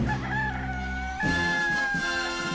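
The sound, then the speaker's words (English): A rooster named Russell crows loudly, a long strained cock-a-doodle-doo that shifts partway through into a rougher, more broken second phrase, with no voices around it. “I heard Russell crow.”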